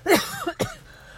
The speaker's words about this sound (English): Excuse me. See, it made me so uncomfortable. I started coughing. Okay. I can tell that my mouth is dry.